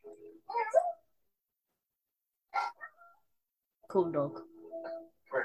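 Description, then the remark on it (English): A dog barks and whimpers in a few short bursts separated by pauses, mixing sharp yelps with higher, drawn-out whines. “He is a cool dog, but we don't get to see him very much.”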